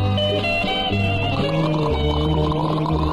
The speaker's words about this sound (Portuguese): Pai, não gagareja com água do mar, é salgada.